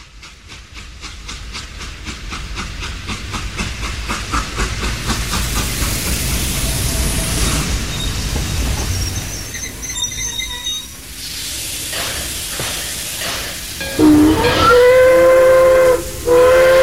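A steam train hisses steadily with rhythmic chuffing, then lets out loud, sustained whistle blasts, the shrill tones rising over the continuous rush of steam.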